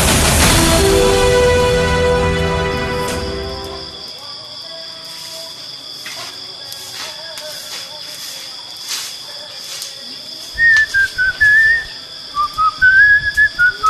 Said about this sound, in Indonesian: Berisik betul nih kami tuh. Sudah malam begini, kita boleh bersiul-siul manggil setan tau lah.